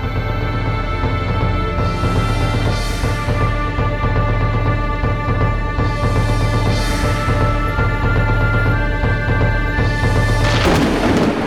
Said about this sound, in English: and I saw when the Lamb opened one of the seals, and I heard, as it were, the noise of thunder, saying, "Come and see."